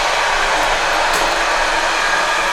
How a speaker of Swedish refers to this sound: Så ska jag stänga ett fönster där det tåget som jag pratade om i början av programmet precis körde förbi i full hastighet.